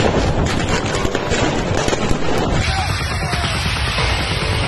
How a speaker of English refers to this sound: Here's some fireworks of peace, if you guys are interested in what the fireworks of peace look like.